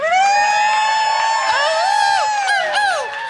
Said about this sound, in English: And just then, Kramer enters. He staggers in like he was running full speed toward the room and forgot he'd encounter a door when he arrived. The audience cheers.